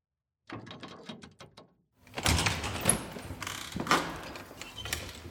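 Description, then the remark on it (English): A quick run of mechanical clicks, like a lock being worked, then a louder rush of rattling and scraping as a door swings open. No one speaks. “I'll get you a white lab coat and a hairnet, and then I'll open the door.”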